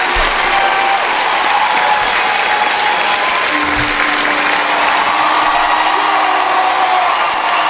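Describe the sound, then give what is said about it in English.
Loud, sustained applause from a large crowd, a dense wash of clapping that fills the whole stretch without letting up, with a faint tonal hum drifting underneath partway through. “So that wasn't a big enough applause there, ladies and gentlemen, so we need to work on that.”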